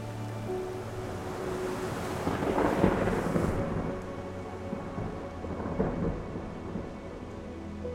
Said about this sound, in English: Imagine the wind, the waves, the rain, the darkness.